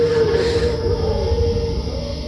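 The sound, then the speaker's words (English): A stomach growls in one long, drawn-out groan: a steady whining tone over a low, bubbling rumble that holds loud for about two seconds, with no talking. “Did you hear that? It's my stomach.”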